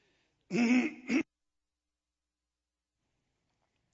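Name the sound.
man clearing his throat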